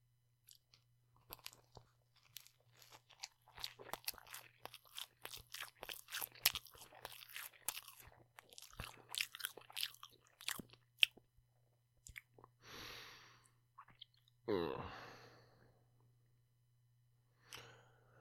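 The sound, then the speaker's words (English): Loud, crisp crunching from chewing a mouthful of food, a rapid irregular run of sharp crackles lasting several seconds, then slowing into a few soft breaths and a sigh, over a steady low hum. “All right, my last bite here.”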